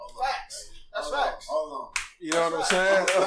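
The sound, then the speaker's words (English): A man talks throughout, and partway through a single sharp hand clap cracks out, with a softer smack earlier under his voice. “Clap that up.”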